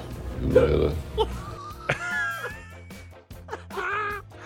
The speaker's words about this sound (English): All I could hear was hiccups.